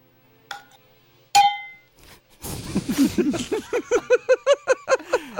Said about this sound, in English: That's the Montana bell.